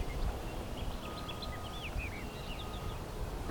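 A song sparrow sings, a faint series of quick whistled notes and short slurred phrases, half buried in a steady rushing outdoor background with no voices.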